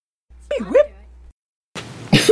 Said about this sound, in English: Oh my gosh, coughed right inside. Cough right inside. Crappy stuff.